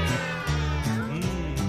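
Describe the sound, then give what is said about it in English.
Several voices imitate a cat's meow together, drawn-out wavering calls repeated a few times in quick succession, fairly loud, with a steady musical backing underneath. “Give me a meow, go.”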